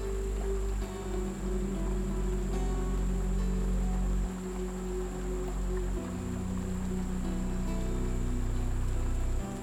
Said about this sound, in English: As you lie on your hammock, you notice it has gently started to rain, and you can hear it as it runs down the roof of your porch. There is something very comforting about listening to the raindrops as they dance around you